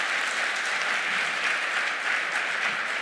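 A church audience claps for the Lord in thanks for the musicians' praise songs, a dense, even wash of applause holding at a constant level throughout, with no voices standing out above it.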